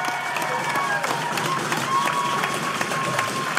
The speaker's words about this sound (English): Let's give a huge Halifax Cineplex round of applause for our guest tonight